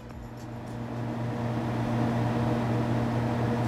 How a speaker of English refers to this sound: Air conditioning.